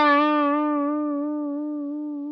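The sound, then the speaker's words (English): A single sustained, buzzy electric note rings out and slowly fades, its tone wobbling with a steady modulation effect that swells and dips in a lopsided, repeating cycle; the dial is turned to 9 o'clock so the modulation rises up the sine wave much faster than it comes down. “What you can now do, so if I turn the dial to 9 o'clock, so this is now going to go up to the highest point, up the sine wave much faster than it's going to come down it.”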